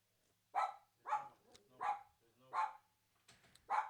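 A dog barks about six times in a steady rhythm, each bark sharp and fairly loud, with short pauses between and no voices.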